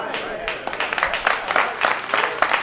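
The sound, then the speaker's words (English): An audience claps its hands in response to a preacher, a dense, uneven patter of many overlapping claps, steady for a few seconds, with voices calling out beneath the clapping. “Ooh, the hand claps.”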